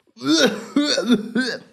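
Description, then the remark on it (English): A person voices three quick, strained coughs in a row, each a short harsh burst with a throaty, tone-like edge, fairly loud, as if imitating a cough. “It's just a spicy cough.”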